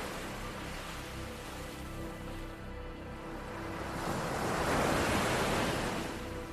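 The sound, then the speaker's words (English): Gentle ocean waves roll onto a beach in a steady, soft wash, swelling into a fuller surge near the end before easing back. No voices. “The salt water rolling gently across your feet cools your body, connecting you to the earth and rejuvenating your energy.”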